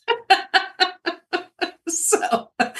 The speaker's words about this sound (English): So, but it's a real uniting common theme is everybody has heard the chickens.